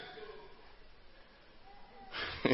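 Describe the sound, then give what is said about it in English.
A single sharp, breathy, loud sneeze bursts out near the end, after a stretch of quiet murmur. “God bless you, sir.”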